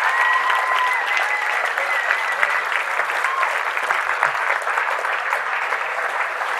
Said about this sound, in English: Stay standing and stay clapping.